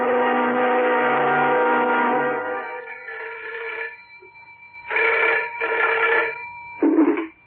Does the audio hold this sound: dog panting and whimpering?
no